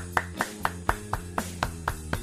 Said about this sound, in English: Everyone give a clap. Give a clap.